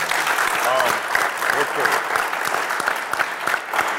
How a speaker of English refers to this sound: You guys give yourselves a round of applause.